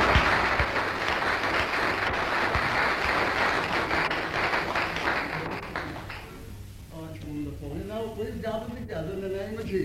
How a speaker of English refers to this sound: Nice to see you from Leicester. Yeah. God bless you. Give them a clap from Leicester.